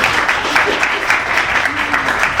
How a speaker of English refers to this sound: so give her a round of applause for that.